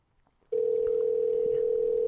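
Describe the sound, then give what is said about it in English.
After a moment of near silence, a steady electronic ringing tone of an outgoing phone call starts and holds evenly, loud and clear, through to the end with no one talking. “It's ringing”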